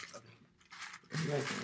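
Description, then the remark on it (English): Dry cereal being crunched as it is eaten dry, without milk, during a cereal tasting: a short burst of crisp, gritty chewing noise, then a louder, denser stretch of crunching, with a faint voice murmuring underneath. “Everybody try it dry.”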